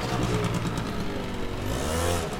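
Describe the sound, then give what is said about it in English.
A motorbike engine rumbles steadily, its pitch rising and falling slightly as it moves along a narrow road between vendor stalls in a busy seafood wholesale market, with constant background bustle and no clear voices. “Vendor stalls are arranged in a complex labyrinth bisected by narrow roads, highways for beeping forklifts and honking motorbikes.”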